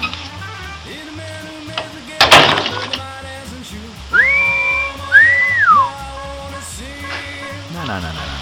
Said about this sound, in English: You know how to whistle, don't you, Steve? You just put your lips together and blow.